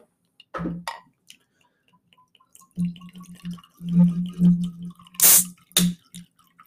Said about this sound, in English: Let's use the product. Here you are, sir. You get the first pour. This one's brand new.